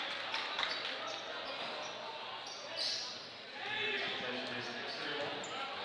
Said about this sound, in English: has the dribble for Township